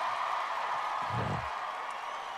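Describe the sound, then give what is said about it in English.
Steady applause from a live audience fills the whole stretch, a dense wash of clapping and crowd noise with a brief low rumble swelling through the middle. “The crowd is pretty hot.”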